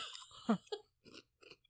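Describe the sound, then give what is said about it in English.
Crunching of crisp black pepper Funyuns onion-flavored snack chips being chewed, several sharp brittle bursts in an uneven rhythm, with quiet pauses between bites and no one talking. “Now, that crunching sound is my teeth shattering.”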